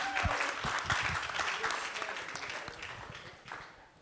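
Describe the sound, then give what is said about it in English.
An audience gives a round of applause to thank a group of men, clapping in a steady, dense round that holds strong for several seconds, then gradually thins and fades toward the end. “Can we just say thank you guys and give one round of applause for all these guys?”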